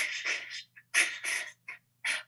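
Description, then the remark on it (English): A person demonstrates frightened, heavy breathing as breath work for showing fear in an acting scene: a quick, uneven series of about six loud, airy gasps and exhales, some short and choppy, with brief silent pauses between them and no words spoken. “Get your breath in the right place and the rest will do it for you. So when you're scared...”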